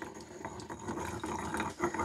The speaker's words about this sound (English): I'm gonna splash a little bit of rice vinegar in.